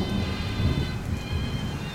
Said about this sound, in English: Uh-oh. Here comes that storm. Better roll up the windows.